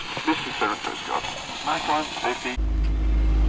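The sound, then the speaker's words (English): A person talks briefly before a boat engine, just switched back on during a sea crossing toward Portsmouth, takes over, droning loud, low and steady, with a broad wash of wave noise running underneath. “We've just had to put the engine back on, so you can probably hear that noise on top of the sound of the waves, because we need to make progress because we don't want to get in too late tonight to our destination, which we hope is Portsmouth.”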